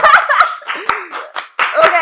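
A lone person claps about five times in an uneven rhythm, each sharp slap distinct, while laughter and some vocal sounds run underneath and between the claps.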